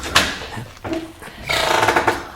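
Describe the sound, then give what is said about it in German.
A door that was thought to be locked but is not locked is opened: a sharp clack and a thud, then a longer rough, scraping creak as it swings, fairly loud with no voices over it. “Also, ich finde das merkwürdig, dass die Tür nicht verschlossen ist.”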